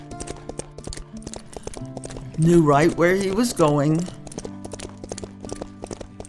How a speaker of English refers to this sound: And he brought his horse out into the road. "Go. Go find Guruji." The horse just started plodding down the road.